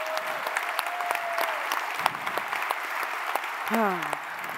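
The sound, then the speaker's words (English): A conference audience claps in a steady round of applause, with dense overlapping hand claps sustained throughout at a fairly even loudness and a few brief vocal tones rising and falling over the noise. “And so this conference is super awesome, so can we just give it a round of applause?”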